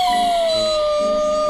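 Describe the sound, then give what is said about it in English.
A dog named Cheese lets out a single long howl as he drags out the remains of a stuffed toy heart, a steady, slightly falling tone that fills the whole moment, fairly loud with no voices around it. “With a howl, Cheese dragged out the remains of the heart.”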